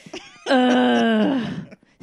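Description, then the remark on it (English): A person lets out one long, loud moan lasting about a second, holding a steady voiced pitch before lifting slightly and trailing off, with soft breathy sounds just before and after. “Here comes the moan.”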